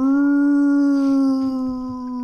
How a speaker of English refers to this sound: Rowdy howls mournfully.